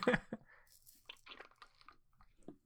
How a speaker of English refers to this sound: Let me get a sip of water real quick.